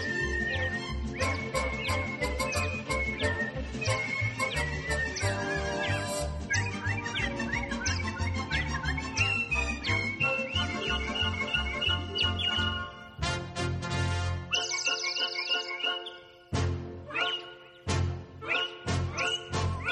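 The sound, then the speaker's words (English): A lively chorus of people whistling bird-like chirps and whistles along in a song, trilling continuously over bouncy musical accompaniment, loud, with a brief drop-out near the end before the chirping resumes. “Take your time from the birds. Now you all know the words. Tweet, tweet, tweet, tweet, tweet. Everybody whistle.”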